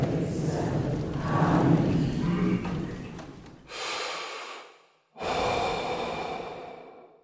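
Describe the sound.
Heavy, panicked breathing close to the mic: a long ragged stretch of rough inhales and exhales, then two sharp, noisy gasping breaths separated by a brief silence. No talking.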